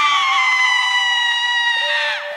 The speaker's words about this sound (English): Now it's time for... Women Screaming!